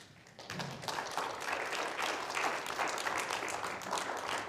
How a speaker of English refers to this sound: That's why when we come to church, let's clap our hands.